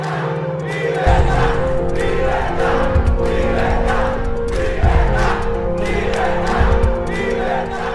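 A large crowd of street protesters in Cuba shouts and chants in a dense, continuous roar of many voices, with loud rhythmic surges and bursts of yelling that stay at full strength for the whole stretch.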